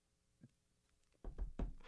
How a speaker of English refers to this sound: Knocks on wood.